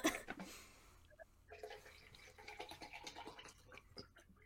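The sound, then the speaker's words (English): Close-up handling of a plastic water bottle: irregular scratchy rustles and crinkles with small clicks and a hint of sloshing, continuing for several seconds without any voices. “What was that? Sorry. That's my water bottle.”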